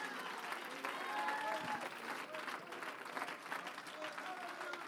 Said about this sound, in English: Oh, come on, clap your hands if you believe that word tonight.